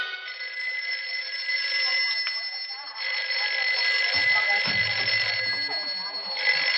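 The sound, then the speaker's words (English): A telephone bell rings continuously and loudly for several seconds, a shrill metallic trill with brief muffled voice-like sounds underneath partway through. “Shove that phone over, will you, partner? Well, who are you buzzing on the Alexander Graham, Judge?”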